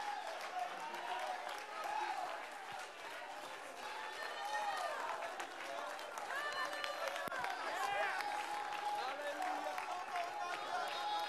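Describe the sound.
An audience in a church worship service claps continuously for the whole stretch, a dense, steady wash of hand claps mixed with many overlapping voices calling out and cheering, staying loud and unbroken throughout.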